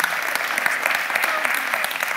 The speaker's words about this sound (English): So awesome. You can clap for that, by the way, if you want. Yeah.